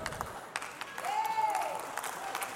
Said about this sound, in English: Hang on, see, boy, don't go over there to Hope Elam. They shout and clap and stuff.